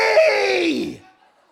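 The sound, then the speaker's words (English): A single loud, drawn-out shout of "Holy!" from one voice imitating a seraph angel screaming, straining and descending in pitch over about a second before cutting off into silence. “I mean, these angels are screaming at the top of their lungs.”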